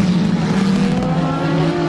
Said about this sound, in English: This is quite far back. There we go, Corvettes. The Corvettes really rumble, don't they